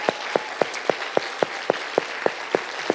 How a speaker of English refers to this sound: And if you believe that, give God a big old applause if that's really your belief today.